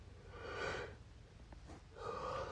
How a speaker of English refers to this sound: I just woke up, so I'm yawning a lot. Sorry.